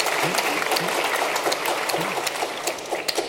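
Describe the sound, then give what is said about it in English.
An audience applauds the head of the Royal College of Psychiatrists, clapping steadily throughout in a dense wash of many hands at moderate loudness, with a faint murmur of voices underneath. “Yeah, why are you applauding?”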